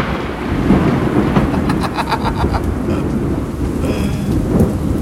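A loud thunder crash from a nearby lightning strike, heard from under a roof in the middle of a field, rolling into a heavy, sustained rumble with sharp crackles, while steady rain pours throughout. No one speaks.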